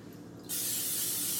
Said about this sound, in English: So just get the spray.